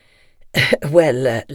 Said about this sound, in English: Now here in the front room, the big man coughs and nods his head.